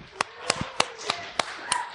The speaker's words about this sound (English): Give them a little something. Golf clap. For everybody.